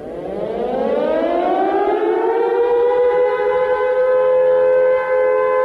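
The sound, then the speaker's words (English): A loud World War II air raid siren, going off at 8:17 in the evening on 3 March 1943 during a pitch-dark blackout, winds up from a low moan into a sustained, steady wail, its rising harmonic tones filling the air without pause and no voices present. “When the siren went off at 8:17 in the evening on the 3rd of March, it was pitch dark.”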